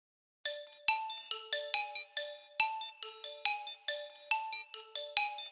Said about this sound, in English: We have an interesting array of street fire alarm boxes on display at the New York City Fire Museum. In fact, visitors can activate one of the alarm boxes and hear how it rung out its signal in the firehouse.